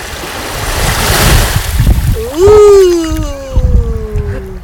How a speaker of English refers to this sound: I'm going to let you enjoy some of the sounds of the Mediterranean Sea, only on KCTK Radio.